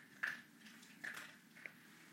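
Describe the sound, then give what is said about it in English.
Quiet crunching as a pet eats: a few sharp, brittle bites at irregular intervals over a low background hum, like chewing dry food. “He's just crunching away.”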